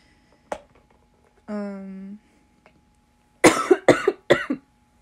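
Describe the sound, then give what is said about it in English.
A loud coughing fit after smoking: after a brief voiced throat noise, three harsh, raspy coughs come in quick succession, with no talking. “Honestly, I wasn't like coughing that bad while I was hitting it, so I thought I was like gonna be good.”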